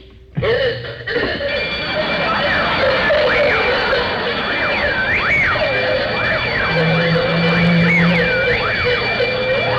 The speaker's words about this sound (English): Need a louder burglar alarm.